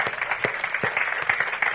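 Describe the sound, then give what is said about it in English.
A church audience gives Jesus a hand clap, applauding with steady, dense hand clapping, many overlapping claps forming a continuous bright patter with a few sharper individual claps standing out. “All right, give Jesus a hand clap since you guys are all mad at me now, all right?”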